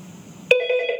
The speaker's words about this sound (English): I've got a phone ringing. Can I make this go away?